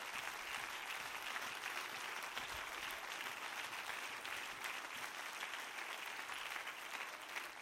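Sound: audience clapping hands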